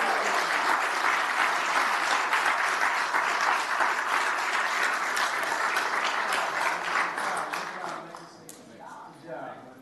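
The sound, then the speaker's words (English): A crowd applauds steadily with dense, bright clapping for about eight seconds, then the clapping thins out and fades to a few scattered claps. The applause is at the Mansfield 2023 Veterans Day Parade awards, for Legacy High School JROTC placing third for Best JROTC Unit. “Okay, round of applause.”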